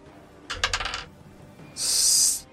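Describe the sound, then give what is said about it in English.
A small eight-sided die (d8), rolled for damage in a tabletop role-playing game, clatters across a hard tabletop in a quick burst of rattling clicks lasting about half a second and lands on 8, followed after a pause by a brief, bright hissing sound. No one speaks. “Yeah, you need to roll a either 2d4 or a d8. I'll do a d8.”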